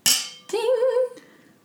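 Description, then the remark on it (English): Wine glasses holding Cabernet Merlot clink together once in a toast: a sharp, bright tap, then a wavering, sustained tone that rings for under a second before fading out. “Okay, we're going to do our wine. Yeah. Cheers.”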